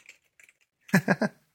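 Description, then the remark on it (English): A few faint key clicks, then three loud, sharp clacks in quick succession from a clicky mechanical keyboard, the one that came with a PowerMac 6100, with no voices. “But this was the keyboard that came with that. And it is super clicky.”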